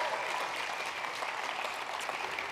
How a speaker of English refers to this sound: Give her a great big hand clap.